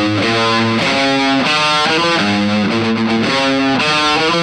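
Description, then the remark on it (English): A loud, heavily distorted electric guitar plays a rapid solo of hammered and tapped notes, quick legato runs shifting pitch in repeating patterns with no voices over it. “See all the hammering was going on in there?”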